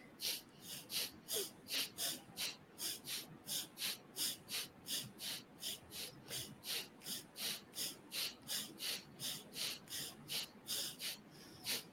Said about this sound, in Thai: ก็คือว่าเราจะหายใจออกนะครับประมาณสัก15ถึง20ครั้ง โอเค ไอ้ระหว่างที่เราหายใจออกเนี่ยคุณสามารถหายใจเข้าได้นะไม่ได้ห้ามนะ โอเค เราจะทำสัก15ครั้งนะนะครับ